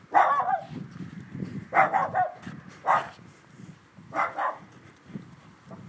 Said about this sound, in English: Going out late at night. That is not my dog.